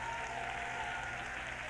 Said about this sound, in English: If you want that kind of Jesus, if you are that kind of believer, would you clap your hands with joy, with confidence?